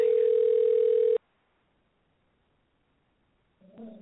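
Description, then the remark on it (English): A steady, loud telephone dial tone, heard after dialing a wrong number, hums for just over a second and cuts off abruptly, followed by near silence and then a faint rustle or voice starting at the end. “Well, I dialed the wrong number.”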